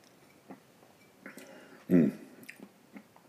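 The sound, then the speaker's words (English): Someone takes a sip of Speyside single malt whisky: a few quiet wet mouth clicks, then a single louder slurping gulp, followed by soft lip smacks. “So I'm going to have a sip of this lovely Speyside single malt.”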